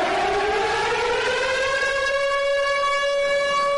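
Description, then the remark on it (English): An air raid siren heard across Ukraine, played as an audio recording, wails in a long, sustained tone that rises slightly and then holds steady, loud and continuous, with no voices present. “Zelensky played an audio recording of an air raid siren being heard across his nation”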